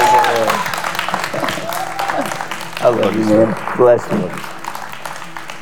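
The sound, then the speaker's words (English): A church audience claps steadily in sustained, dense applause to welcome a guest teacher, while a man speaks warmly over the clapping. “In Jesus' name, give him a good hand clap and welcome.”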